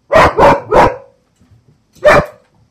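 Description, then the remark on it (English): A dog that is digging under something barks loudly, three quick barks in a row, then a short pause before one more bark. “What on earth are you digging under there for, dog?”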